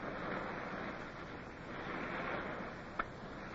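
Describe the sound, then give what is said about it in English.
Surf rolls onto the beach of a tropic island at Scotchman's Bay in a land breeze, a continuous, moderately loud wash, swelling gently and subsiding, with a brief sharp knock near the end. No voices. “The land breeze caught us, and then we heard the swell of the surf.”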